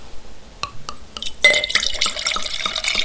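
A few light clinks and drips, then a steady gurgle of wine being poured from a corked bottle into a glass for about a second and a half, not a heavy pour, with no talking.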